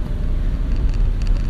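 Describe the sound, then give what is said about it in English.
A steady, deep rumble of road and engine noise fills the cabin of a moving car, constant and fairly loud with a faint hiss above it and no voices. “I'm out here driving the car.”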